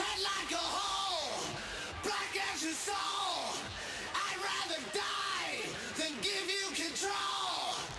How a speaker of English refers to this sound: isolated vocals from the chorus, just because they're so visceral and good and so heavily distorted. I wanted you to hear what they sound like, the chorus vocals.